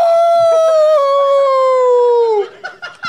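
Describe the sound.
A single loud, drawn-out howl holds a steady tone that sags slowly downward for over two seconds, then breaks off into a few short, scattered sounds.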